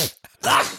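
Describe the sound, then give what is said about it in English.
A single sudden sneeze bursts out loud, preceded by a brief sharp intake of breath, then cuts off quickly. “The old man sneeze that comes out of nowhere.”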